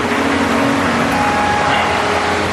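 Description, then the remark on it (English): A loud waterfall roars steadily for the whole stretch, a dense, unbroken rush of hissing water noise with no pauses or changes in level. “I forget who pointed it out, but it's like they're having this really intimate conversation with this waterfall sound effect in the background, and it sounds like way too loud.”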